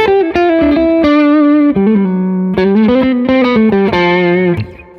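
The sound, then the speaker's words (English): An electric guitar on its neck pickup plays a loud, sustained single-note melody with smooth slides and a warm, slightly overdriven tone, ringing out alone before fading at the end. “And then the neck pickup is nice, too.”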